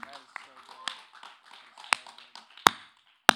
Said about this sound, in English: Sorry, I just wanted to clap in the microphone.